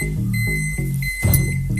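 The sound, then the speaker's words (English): A microwave's electronic beeping signalling that its cooking is finished, a steady high-pitched tone over a low humming drone that shifts in short steps, with no talking. “All complete, all finished. Let's take it out of the microwave.”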